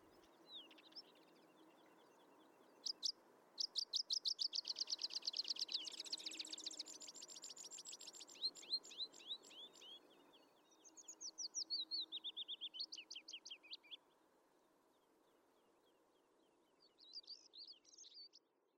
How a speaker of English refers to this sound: I can hear birds calling and insects buzzing, a taste of what wilderness in Scotland is supposed to be.